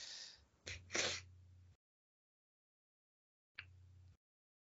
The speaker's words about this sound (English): She knows she snores. It's fine. And she knows how bad it is.